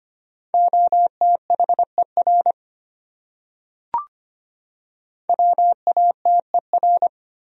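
Rapid Morse code at about 25 words per minute, sending common English words: a steady mid-pitched tone keyed into quick dots and dashes, two bursts of letters separated by a pause with a single sharp click.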